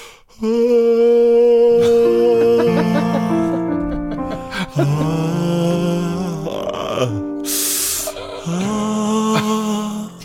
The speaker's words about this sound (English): Whenever one of us yawns, you have to put it to music. That's great. What was that yawn? What was that yawn? Then that was a G sharp. Oh, okay, it's a G sharp.